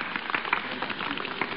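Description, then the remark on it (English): A crowd claps steadily, a dense, even patter of many hands that keeps up without a break for the whole moment, with no voices heard. “Whom are they applauding?”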